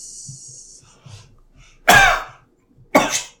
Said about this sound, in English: Oh, it's convincing. I thought the first cough was actually real. That was wild.